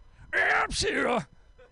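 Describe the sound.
A man imitates a sneeze as a gravelly rock-singer bellow: two loud, strained vocal bursts, the second longer with a falling, growling pitch, then quiet.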